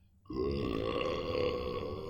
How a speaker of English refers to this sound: Oh, that was a good burp.